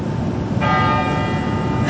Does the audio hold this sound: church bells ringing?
yes